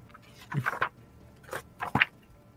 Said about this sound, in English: Let me flip back to it in my paper book.